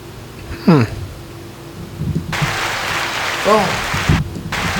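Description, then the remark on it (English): Partway through, a burst of crowd applause from a sound effect breaks out and continues steadily to the end, a dense wash of clapping, with a voice's falling, sing-song exclamations heard before and over it. “Oh, I thought that was thunder. Yeah. It was just thunderous applause.”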